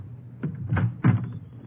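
A door is unlatched and pulled open: a quick series of three dull knocks and rattles over about a second, with a low rumble underneath and no voices.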